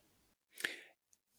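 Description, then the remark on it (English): A single short, breathy cough, bursting out and fading within half a second, followed by a faint click in otherwise quiet surroundings. “You can edit out my coughing.”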